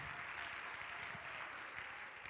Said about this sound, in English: Come on, let's clap hands and thank the Lord together.